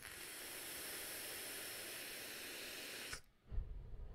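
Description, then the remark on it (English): A steady, airy hiss from a draw on a vape device with wide open airflow, loaded with 6 milligram DIY e-liquid, lasting about three seconds before stopping abruptly, followed by a brief low rumble. “Big, swooshy, wide open airflow.”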